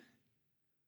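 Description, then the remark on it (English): A short, breathy sniff as someone smells a drink's aroma, quickly fading into quiet. “Let's get a proper nose. A little sniff of it.”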